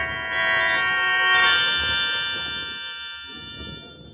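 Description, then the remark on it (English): A doorbell at the door of a bungalow converted into a duplex rings once, a bright, sustained tone that holds for a couple of seconds before fading out, with no voices and only a faint low rumble underneath. “I rang the doorbell.”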